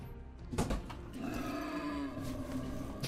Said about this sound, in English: Angry pig. Pig noises. Yay, pig noises.